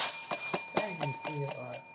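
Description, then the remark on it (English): A small novelty hand bell received as a gift rings rapidly and repeatedly, about four quick strikes per second, with bright sustained metallic tones hanging in the air. It's loud, with a voice faintly audible underneath. “Wait, show the camera what your bell says.”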